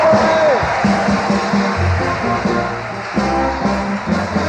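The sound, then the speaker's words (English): A large audience claps and cheers loudly and continuously in praise of the Lord, a dense wash of applause mixed with shouting voices from start to finish. “Come on, give the Lord a hand.”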